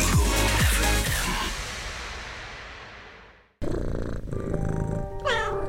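A loud musical jingle fades out, then after a brief cut a cat meows clearly near the end, over a low, steady background that could be purring.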